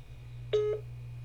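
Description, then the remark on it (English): A phone gives a single short electronic ring tone for an incoming call, a bright buzzy chirp lasting about a quarter second, heard alone over a steady low electrical hum. “Sorry, my phone's going off. Someone was calling me.”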